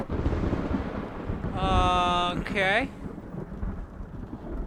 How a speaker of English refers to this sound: And then and you hear thunder crack outside that the house. That's not supposed to happen.